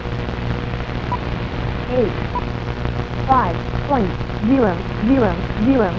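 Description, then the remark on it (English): Steady radio static on the 5 megahertz band, tuned in after 2.5 megahertz to check band conditions, a dense hiss and crackle throughout, joined in the second half by faint warbling tones that swoop up and down in short repeated arcs. “Okay, let's go to 5 megahertz. This is a good way to find out how the bands are doing. So we're on 2.5. Here's 5. Just static.”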